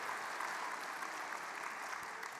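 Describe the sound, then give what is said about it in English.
A crowd of people applauding, a dense, steady wash of many hands clapping at once that holds at an even level throughout, fairly close and with no voices over it. “My wife's gonna be so happy that you guys clap for that.”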